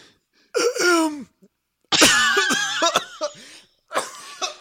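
A loud coughing fit: several harsh, strained coughs in three bursts separated by brief pauses, with raspy throat-clearing sounds and no speech.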